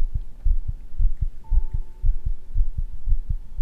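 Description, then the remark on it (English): A fast, pounding heartbeat thumps in low, paired beats throughout, with a faint steady tone sustained underneath from about the middle onward. No voices are heard. “My heart was beating out of my chest.”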